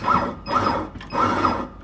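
Coffee beans being ground in a grinder, a harsh, gritty mechanical whirr that pulses in three bursts with a thin high whine over the rattle. No voices.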